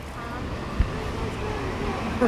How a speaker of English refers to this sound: Lawrence Halprin chose to put the water down the center of the staircase. So let's experience that as we walk to the bottom.